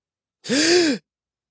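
A single sharp, breathy gasp for air from a person clutching their throat, fairly loud, with a voiced catch that rises and falls in pitch, lasting about half a second with silence around it.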